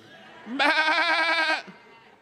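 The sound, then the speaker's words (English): A group of voices imitates a sheep, letting out one long, wavering bleat together that lasts about a second, loud, then fades away. “what's the best thing a sheep can do when they've wandered off into darkness? Let's all do it.”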